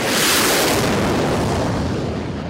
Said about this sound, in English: They took us out along newly extended runways to watch a steady series of planes taking off. The roar was deafening.